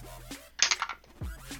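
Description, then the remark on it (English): A quick clatter of dice tumbling across a hard tabletop, rolled for a constitution saving throw in a tabletop role-playing game, a burst of several sharp rattling clicks that settles within half a second, followed by a soft thud, with faint murmuring voices around it. “Oh man, these dice hate me.”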